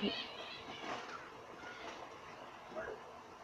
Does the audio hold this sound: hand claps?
no